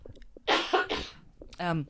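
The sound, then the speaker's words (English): Two harsh coughs burst out in quick succession, followed by a short voiced throat sound, loud against a quiet background. “I have to cough.”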